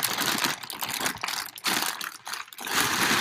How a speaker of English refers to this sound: Put the sauce dripping in there.